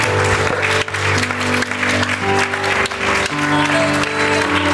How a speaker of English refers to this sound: Would you clap your hands unto the Lord today?